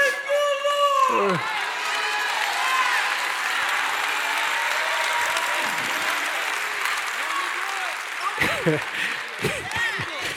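An audience bursts into applause and loud hollering, with a sharp whistle rising at the start and more whoops breaking through near the end, the noisy clapping sustained throughout.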